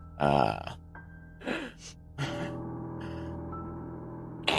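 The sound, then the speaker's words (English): Heavy, ragged breathing from behind a door in a few rasping bursts, opening with a loud, guttural, almost belching gasp, then hoarser breaths over a low steady hum. No one speaks. “You hear like a heavy breathing.”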